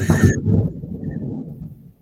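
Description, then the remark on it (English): A thunderclap opens with a sharp, bright crack, then gives way to a deep, loud rumble that rolls on and slowly fades over about two seconds. No one speaks. “These are very interesting thunderstorm in conjunction with what I'm saying.”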